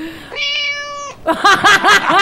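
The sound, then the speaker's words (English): A human voice imitating a cat: one long, steady drawn-out tone, then a quick run of about five short, wavering meows, loud, with no talking. “That sounds like just like my cat”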